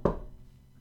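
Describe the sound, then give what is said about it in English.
A single dull knock on wood, a short hollow thud that dies away quickly into quiet, with no voices. “And also I'm going to knock wood right now.”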